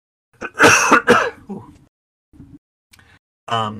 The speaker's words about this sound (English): Hold on, I need to cough. I'll cut this out.